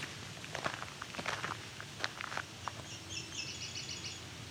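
A bird warbles a quick series of high, clean notes near the end, after footsteps crunch over the first half.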